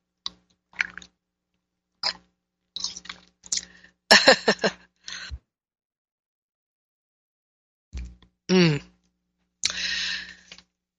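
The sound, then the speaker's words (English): Short, wet slurping sips of tea and small mouth clicks come in scattered bursts, then a gulp and a breathy exhale of satisfaction, with no talking. “Okay, I must sip my tea.”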